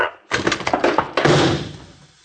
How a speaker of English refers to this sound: Well, if you get the door, I'll toss the shell. All right. Wait a minute. You got the pin?